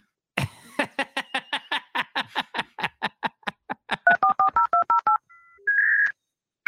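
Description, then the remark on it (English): A rapid run of telephone keypad beeps, many quick presses in steady rhythm, closing with a brief pause and a longer sustained tone, clear with no talking. “Sweet little baby Jesus, please pick up the phone.”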